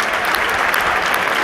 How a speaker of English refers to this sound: But whenever there is a kind of standoff between the bull and the bullfighter, you can hear everyone clapping. And the bullfighter is doing a kind of lap of honour, raising his hands towards the audience, the crowds, applauding him.